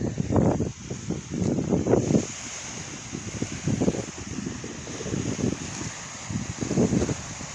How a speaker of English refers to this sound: Because it's windy out here. And you're going to hear the water. And I'm trying to get as close as I can right now. I want you to hear this natural waves of the lake or ocean. Whatever you want to call it.